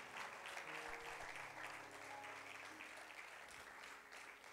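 A church audience at GracePoint claps steadily to praise the Lord during a morning worship service, a dense wash of many hands blending into continuous applause, with faint murmuring beneath it.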